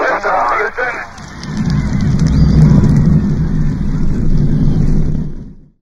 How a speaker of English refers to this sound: We have main engine start. 4, 3, 2, 1, 0.